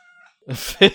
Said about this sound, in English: such a loud cat.